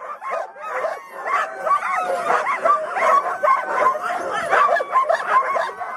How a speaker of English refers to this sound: Let's walk over to the kennels and meet the sled dogs.